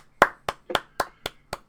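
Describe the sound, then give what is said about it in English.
Brief applause from what sounds like one person: six sharp, evenly spaced hand claps at a steady moderate pace, fairly loud and with no talking. “Okay, that's applause worthy.”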